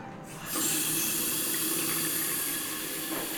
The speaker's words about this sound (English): But what I'm really excited to see is my hotel bathroom. I'm about to turn on the faucet.